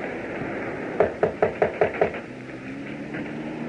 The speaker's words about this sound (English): Now, shall I knock? Yes.